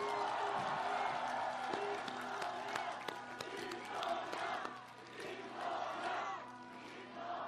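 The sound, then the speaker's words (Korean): A large crowd at a political rally applauds steadily for several seconds in encouragement of former candidate Kim Dong-yeon, dense clapping mixed with cheers and shouted voices that swell and fade in waves, staying loud throughout. “쉽지 않은 결단 내려주신 우리의 동지 김동연 전 후보께 격려의 박수 부탁드립니다.”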